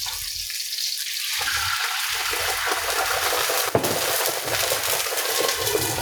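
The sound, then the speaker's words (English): Wine splashes into a hot pan of seared, flipped salmon on a burner at medium, setting off a loud, steady hiss and crackling sizzle that carries throughout, with one sharp click partway through and no talking. “Now I'm gonna put the wine in there.”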